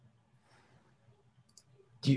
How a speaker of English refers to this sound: Every time there's a mouse click, you're like, oh, bro.